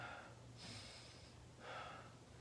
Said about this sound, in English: So the first thing I do for a functional core to prevent low back pain is utilizing diaphragm. So there's a few different ways that I do this. So traditionally, if I am lying down, one hand on my belly, one hand on my chest, breathing.